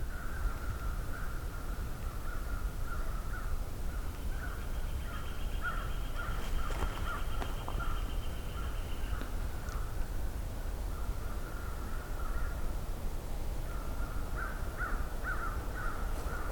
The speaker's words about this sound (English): Sounds like some crows are coming this way. This is nice. We got two flickers and an American crow, or several American crows actually.